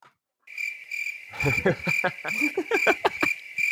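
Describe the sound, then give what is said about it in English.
A steady, high-pitched cricket chirping starts after a brief silence and trills on continuously and fairly loud, with indistinct voices murmuring underneath for the second half. “I see what you did there. Crickets.”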